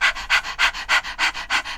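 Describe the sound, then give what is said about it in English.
A person imitates a dog's panting as a breathing exercise to work the diaphragm for the voice, with about seven quick, even, breathy huffs in a steady rapid rhythm, fairly loud, with no talking. “What else we can do is that the dog, the panting breathing like a dog, right?”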